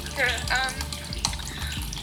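Water gushes steadily and fast from a cracked pipe, a continuous splashing rush, moderately loud, with bubbly hissing swirls and low rhythmic thuds underneath.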